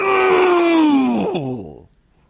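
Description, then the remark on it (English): A man's voice lets out one loud, drawn-out anguished groan, strained, its pitch sagging downward before it trails off into silence, a performed imitation of Paul's shriek. “And then Paul lets out one of the greatest shrieks of all time.”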